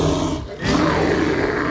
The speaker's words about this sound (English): It's like the bricks start stacking on top of each other, and he is now in the form of a brown bear. And he has claws out, and he just roars right in your face.